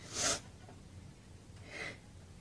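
Someone blows their nose into a handkerchief in two short, noisy snorting bursts, the first sharper and louder, the second softer, a moment apart, with no talking.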